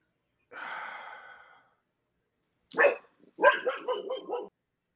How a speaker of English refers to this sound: Hi, dog. Keep barking. You might have the answer. There he is.